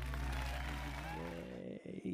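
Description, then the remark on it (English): A short burst of audience applause and cheering, fairly quiet and steady, fading and breaking off after about two seconds, with a tonal hum running under it and no one speaking. “Yay, a little applause there.”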